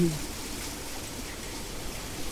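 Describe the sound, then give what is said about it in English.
Spring water pours gently and trickles steadily into a pool, a soft, continuous wash of running water with no breaks or distinct splashes, at a low, even level. “You're going to hear quite a bit of water, I think, in this recording.”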